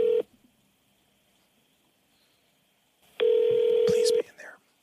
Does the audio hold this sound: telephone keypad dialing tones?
yes